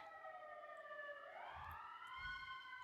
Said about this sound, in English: Sorry if you hear sirens.